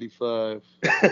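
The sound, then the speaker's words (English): A single sneeze: a short voiced, tonal build-up followed by a loud, noisy burst of air that trails off quickly. “Neither one of y'all just going to say bless you?”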